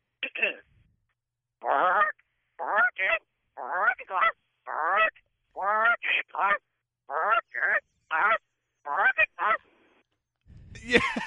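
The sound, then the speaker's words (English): A person imitates a goose, making a rapid series of nasal, honking calls in short bursts, fairly loud, ending with a brief noisy rustle. “Can you say working class with the goose sound and then working class bow hunter?”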